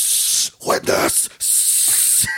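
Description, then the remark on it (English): Loud hissing of a spray paint can in bursts: a half-second spray, a rougher sputtering stretch, then a longer steady spray of nearly a second that cuts off abruptly. “Are you spray painting your ball sack?”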